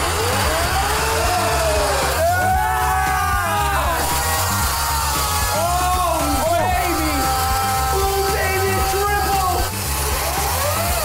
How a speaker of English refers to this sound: We're gonna start with a chainsaw.